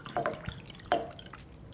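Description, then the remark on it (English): Water splashes into a glass in a few short, bright bursts, with ringing plinks and trickles, fairly quiet and with no one speaking. “It's just water, man.”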